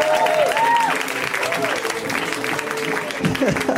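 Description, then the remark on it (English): A crowd applauds a stand-up comedian being introduced, steady and loud, a dense crackle of many hands clapping, with a few whistles early on and whoops and cheering voices rising near the end. “Ladies and gentlemen, please, round of applause”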